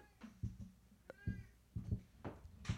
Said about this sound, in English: Sorry, I had to let the cat in. He was screaming outside the door.